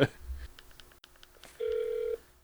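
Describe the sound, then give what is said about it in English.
Faint, short beeps and clicks from a phone dialing a 1-866 number on speakerphone come through its small speaker, followed by a steady, thin electronic tone lasting about half a second. “can you put that on speaker? Phone here.”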